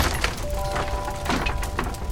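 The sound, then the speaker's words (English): A huge wooden crate filled with bales of marijuana crashes and breaks apart, with several loud splintering cracks and crunches in quick succession over a rough, noisy background. “Then a huge wooden crate filled with bales of marijuana crashed directly on Ahab's head.”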